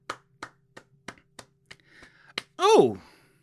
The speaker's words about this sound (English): Today is the 100th anniversary of Cheez-It Snack Cracker, made and originated in Dayton, Ohio. Can we give that a round of applause?